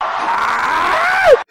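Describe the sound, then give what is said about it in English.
Howard Dean's scream played as a sound effect: a man's excited scream rings out loud for over a second, a sustained strained yell that rises in pitch and ends in a sharp falling shriek before cutting off abruptly. “I mean, that's the most fitting use of the Howard Dean scream, I think, yet.”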